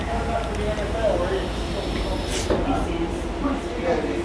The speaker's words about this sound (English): I'm gonna jump on the train, guys.